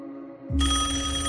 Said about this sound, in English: On the table next to him, a phone rang.